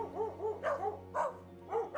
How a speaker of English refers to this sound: Hey, boy. Sit. Great pair of dogs you've got here